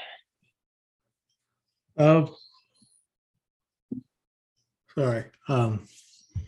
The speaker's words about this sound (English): Had a bit of a yawn.